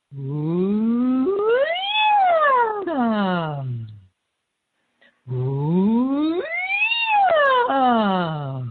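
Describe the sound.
A voice imitates a siren as an energy-raising exercise, gliding from a low pitch up high and back down, done twice with a short silent pause between the two sweeps.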